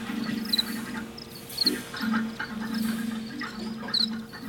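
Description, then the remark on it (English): Crickets chirp in short, high bursts over a dense, steady night chorus with a low droning hum underneath, continuous, with no one talking. “From my experience being around cricket sounds, feels very calming and therapeutic.”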